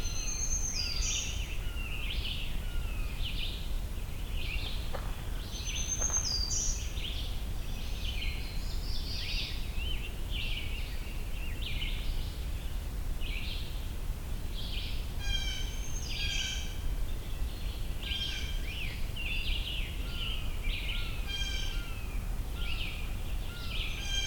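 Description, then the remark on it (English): A red-shouldered hawk calls repeatedly amid a busy outdoor bird chorus, its sharp, high cries recurring in bursts over a steady low background rumble, with no one talking. “Red-shouldered hawk again.”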